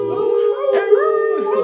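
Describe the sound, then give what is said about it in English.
A person imitates a werewolf's howl, a loud, sustained wavering cry that rises and dips in pitch, with no other sounds around it. “Loose dogs call out.”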